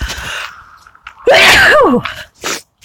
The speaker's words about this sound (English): Oh, I can sneeze again.